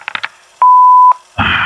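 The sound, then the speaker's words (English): A few quick electronic button beeps on a new phone, then one steady mid-pitched tone lasting about half a second, followed by a sudden burst of loud hissy noise. No one speaks. “I don't know how to work this new phone.”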